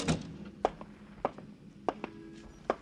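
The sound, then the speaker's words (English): An office door opens with a quiet series of wooden thunks and clicks, spaced roughly evenly over a few seconds, without any voices. “and then stare at the walls, and then hear the door open for it.”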